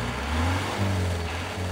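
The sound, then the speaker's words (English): The fearsome engine of a red and blue Thai long-tail boat, crossing a river into a Karen area of Myanmar, drones steadily with a deep, throaty low hum, its pitch shifting slightly as the motor labors, loud and continuous with no voices. “We've just hopped into one of the long boats that Thais use on their busy rivers. But this one's in the middle of nowhere.”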